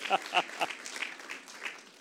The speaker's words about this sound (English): Lord, bless them. Amen. Give them a hand. Bless you this morning.